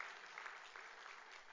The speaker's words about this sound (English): How many of you volunteer in some organization beyond Noblesville First? Thank you. Can we applaud everybody?